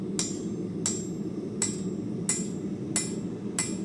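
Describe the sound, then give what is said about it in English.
Six evenly spaced hammer blows ring out on a blacksmith's anvil, the last blows finishing a forged piece, each strike leaving a bright metallic ring over a steady low roar in the background. “You know, that last hammer blow.”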